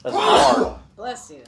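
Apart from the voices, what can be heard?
sneeze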